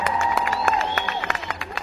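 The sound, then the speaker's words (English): A crowd cheers with a steady wash of excited voices, punctuated by sharp scattered claps and a few rising whoops, lasting about two seconds, greeting guest Gene Valentino on a Friday morning radio show. “The crowd is certainly happy you are here.”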